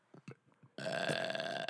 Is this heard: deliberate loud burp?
yes